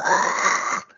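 A small dog named Penny, being held, lets out one rough, breathy grunt lasting under a second, a raspy snorting sound that holds steady and then cuts off, heard alone with no talking.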